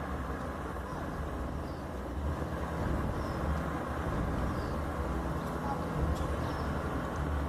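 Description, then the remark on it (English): A helicopter flying toward something to check it out makes a steady, heavy rotor rumble that drones on without a break, fairly loud and even, with a low throbbing texture under the noise. “And you can hear the rotors of the helicopter.”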